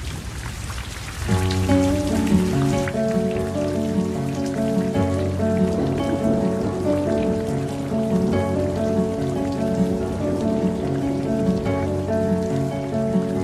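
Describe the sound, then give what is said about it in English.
Steady, hissing rain pours throughout, first alone for a moment, then continuing beneath gentle sustained instrumental music that enters and carries on over the downpour. “Well, let's finish off this good news with a little bit of rain.”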